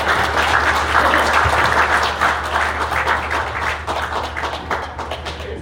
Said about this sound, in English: Wow. Wow, big round of applause for our kids.